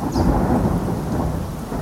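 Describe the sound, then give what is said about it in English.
Steady rain pours down at a park on a cold day, with a deep, rumbling roll of thunder underneath, loud and continuous throughout, with no voices present. “Back at the park, it was cold and started raining.”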